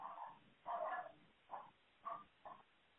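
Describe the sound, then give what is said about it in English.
A dog barks about five times in an uneven series of short, muffled yelps, fairly quiet, with no talking over it. “Sorry, dog.”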